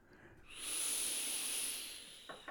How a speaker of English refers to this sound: And I will click my vape.